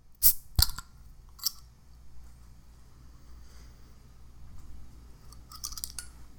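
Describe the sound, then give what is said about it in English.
A whisky bottle is opened with a couple of sharp cork-and-cap clicks and a lighter tap, then a quiet low rumble before a soft, brief splashing pour into a glass near the end. “That being said, we're going to pop it open, pour it out”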